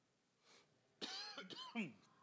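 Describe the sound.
A few rough, voiced coughs in quick succession, loud and close, the bursts separated by short gaps after a faint breathy sound.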